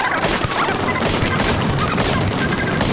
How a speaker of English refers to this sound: And so, with the sound of Scottish seabirds screeching in our ears and the smell of buckshot in the air, it's time to say goodbye from wherever we are.